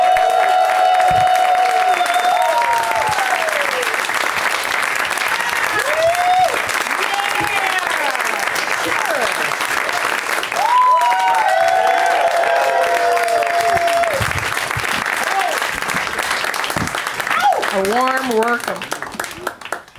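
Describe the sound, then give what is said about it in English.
A sustained wave of audience applause welcoming guests on Douglas Movies, with whoops and cheers rising over dense clapping, holding steady for about twenty seconds before tapering off at the end. “Please give a big warm welcome to Jessimae, Peluso, Josh Wolf, and Michael Cudlitz.”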